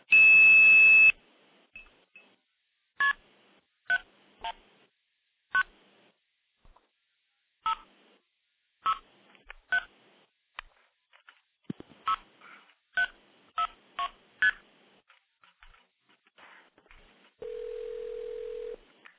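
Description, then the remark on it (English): A burst of tone opens, then a quick run of short touch-tone dialing beeps in uneven clusters as a number is dialed on the phone line to redirect a call, ending with a steady low tone. No one speaks. “So you can call into the system, make a call, blow it off with 2600, redirect it to another number without actually hanging up and starting over again, which is exactly the way it worked back in the 70s.”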